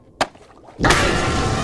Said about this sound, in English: It was, like, through the roof, but the pineapple sounds better. So a giant anchor smashes through the pineapple, and startle SpongeBob.